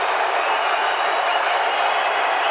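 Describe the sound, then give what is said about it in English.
A large Clippers arena crowd at a basketball game against the Jazz roars and applauds around Donovan Mitchell's free throw, in a dense, continuous wash of noise that stays loud and steady throughout, with no pauses and no single voice standing out. “The din from the Clippers crowd is quieted by Donovan Mitchell's free throw.”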